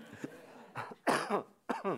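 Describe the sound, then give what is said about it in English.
A forceful cough, from a preacher about to begin a sermon, that breaks into a short run of three harsh bursts, the middle one loudest, with no talking around it. “Hold on, let me have one good cough before I start.”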